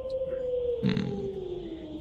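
A single long, drawn-out howl holds one steady tone for the full two seconds, sliding gradually lower in pitch, with a short rough burst of noise partway through.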